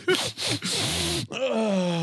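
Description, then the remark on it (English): A loud, breathy sniff into the microphone in a few harsh, noisy pulls, ending in a drawn-out voiced groan of disgust. “I'm gonna give my microphone a big sniff so the viewers can hear it.”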